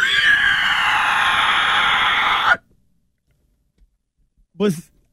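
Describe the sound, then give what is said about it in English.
A person imitates an anguished pig squeal: a loud, shrill, sustained screech lasting a couple of seconds, cutting off abruptly, followed by silence and a short low grunting sound. “It's the anguished oink of pig man.”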